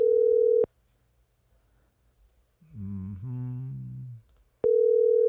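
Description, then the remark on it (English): Two long, steady telephone ringback tones of a phone call to a wife who is downstairs, one at the start and one at the end. Between them is a quiet pause and a brief harmonic vocal-like sound. No talking. “Actually, I'm going to call my wife here.”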